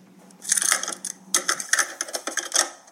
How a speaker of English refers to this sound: The metallic scraping. We've got the original of that. This is a recreation. Okay. But it's still pretty spooky.